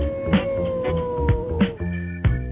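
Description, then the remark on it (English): A voice imitates a wolf howl, holding a long, steady wavering tone at moderate loudness, broken by a few short sharp bursts. “Come on, wolf. Oh, come on, dog.”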